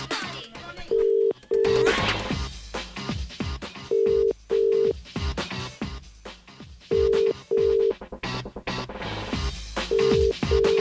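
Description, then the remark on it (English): A telephone ringing tone, calling a contestant, sounds in four double-ring bursts, evenly spaced every few seconds, clear and prominent over a busy music bed with no voices. “We're going to ring the contestant now, okay?”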